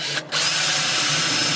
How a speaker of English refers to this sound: The power tools are coming out, everyone.